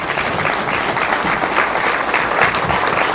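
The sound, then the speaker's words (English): Sustained applause from an audience for Justin Peters, a dense, steady wash of many hands clapping at an even loudness throughout, with no voices standing out. “Let's give Justin a big round of applause for coming today.”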